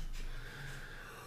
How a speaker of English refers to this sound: …'s over here yawning because he's not fucking.